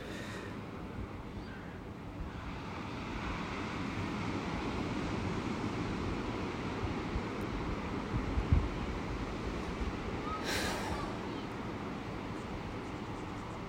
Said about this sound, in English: And I'm going to walk outside, actually, so you can hear and I can hear the crashing waves there. Let's just listen for a minute.